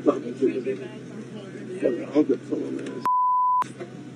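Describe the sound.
Voices in a played video talk over one another, then a single steady high-pitched censor bleep cuts in, loud and clean, lasting about half a second as the talk drops out, before speech resumes.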